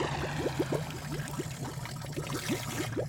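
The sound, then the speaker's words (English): A rushing wall of water churns steadily throughout, with repeated bubbly gurgles rising over a low continuous roar; moderately loud, no voices. “Ah, a wall of water and piranhas coming right towards me.”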